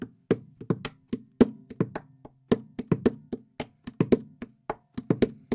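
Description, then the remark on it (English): Rhythmic hand taps and thumps on the wooden body of a guitar held in a lap, played like a drum in a quick, syncopated pattern, with low resonant booms ringing under sharper slaps; no one speaks. “Sounds like a drum, right?”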